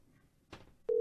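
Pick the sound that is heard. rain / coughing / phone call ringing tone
phone call ringing tone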